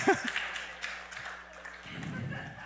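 A few light, irregular hand claps from a woman's son, fairly faint, over a low steady hum, with a brief murmur of voice at the very start.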